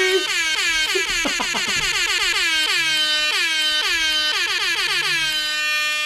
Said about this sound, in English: Well, one thing I know for sure is that season 2 has to have a whole lot more air horns! Yeah, baby!